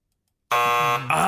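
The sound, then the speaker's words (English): A loud, harsh electronic quiz buzzer sounds after a moment of silence, a steady sustained drone rich in overtones lasting under a second, with a brief dip before it resumes. “I'm regretting it buzzing.”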